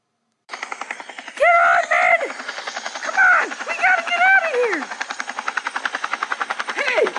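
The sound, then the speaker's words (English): A helicopter, the Fritter copter, takes off from an old abandoned building, its rotor chopping in a fast, steady rhythm, loud, building toward the end, with several short rising-and-falling shouts or whines cutting over it early on. “There's helicopters leaving a old abandoned building.”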